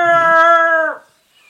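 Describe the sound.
A person imitates a Bigfoot call with one long, steady howl, loud and fairly high-pitched, held for about a second before it breaks off abruptly into silence.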